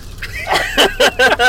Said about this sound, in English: Stop crinkling that. Well, I'm trying to get the snacko out of it. It's no louder than the rain.